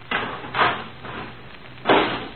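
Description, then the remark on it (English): A garbage can lid is set in place over someone hiding inside the can, with three scraping, clattering knocks, two close together and one after a short pause, fairly loud with no voices. “Okay, put the lid on.”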